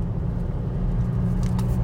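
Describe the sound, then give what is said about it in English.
A steady low rumble of a car driving on the road, with a constant engine and tyre drone that holds an even loudness throughout, and no one speaking. “So yeah, as always, I'm doing a podcast on the fly as I'm here driving.”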